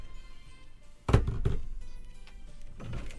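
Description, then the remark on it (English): A door is shut with a solid thump, followed quickly by a second knock-like bump and another fainter thud a moment later. “He shut the door.”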